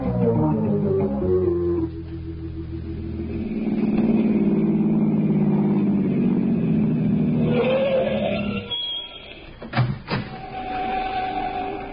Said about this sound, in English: Let's go for a drive. Where to? Bayshore. On a fishing expedition of our own.